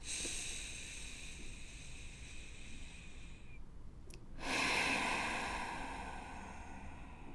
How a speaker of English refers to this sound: Would it be awkward if we just did another 10 seconds of just breathing on the podcast? Like, for me, I'm like, would that be awkward just sitting and like listening to me breathe through your stereo system? And yet that's exactly what is needed.